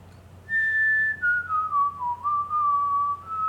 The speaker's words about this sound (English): Do you hear that? That's … whistling.